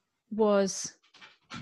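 animal, dog panting

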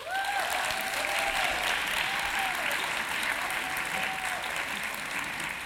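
crowd, audience applause

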